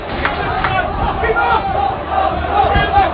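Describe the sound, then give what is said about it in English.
A football crowd of Wolves fans roars and shouts in protest, wanting a red card in a match against Crusaders, a dense, steady wall of angry voices with rising swells of yelling and no single voice standing out. “Well, I can hear what the Wolves fans think. They want red.”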